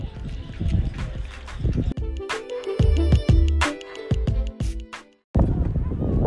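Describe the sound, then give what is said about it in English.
Steady seaside ambience on the coast, with lapping active water, lots of boats and sailing out on the sea, and faint children's voices in the background, broken in the middle by a sustained tonal musical passage and a brief silence before the beach wash returns. “Today's mud hut is coming from the ambience of the seaside. Got ambience of children in the background as well.”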